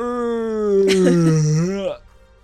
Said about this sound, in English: He yawns.